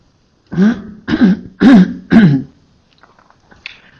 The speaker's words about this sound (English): I keep having to clear my throat because it's, something's happening there